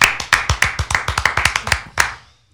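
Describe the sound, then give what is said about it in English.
A quick burst of about a dozen sharp hand claps in a slightly uneven rhythm, then a short ring-out into silence. No one talks. “I just realized that as I was clapping.”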